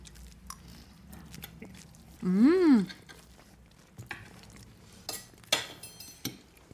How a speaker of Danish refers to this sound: Lad os smage på maden. Ej, jeg er sindssygt spændt, altså.